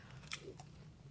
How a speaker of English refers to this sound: Oh, wait. I'm sorry about my offensive crunching.